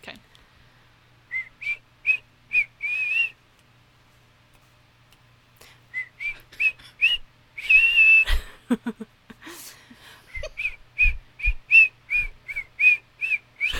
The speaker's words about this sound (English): I think I picked another song that's hard to whistle, so it'll be good.